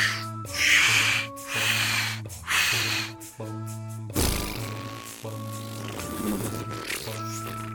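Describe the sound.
A voice mimics blowing up a balloon as a birthday sound: a series of puffing, humming breaths in steady pulses, followed by a long hissing rush of air and some sputtering noise.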